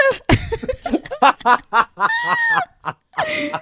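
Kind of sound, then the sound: vocal imitation, imitated cough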